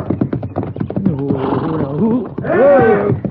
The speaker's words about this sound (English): Yeah. But that horse is stomping him.